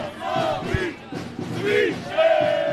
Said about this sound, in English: people streamed down one of Zagreb's main streets, waving the red and white checkered flag of Croatia and signs that say, "Unborn lives matter too." Some stopped to shout at the handful of counter-protesters, mainly women, standing to one side.